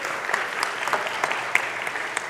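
Steady applause from a group after a Bible passage is read aloud, a dense wash of many hands clapping at an even level with small sharp claps popping out, no voices heard.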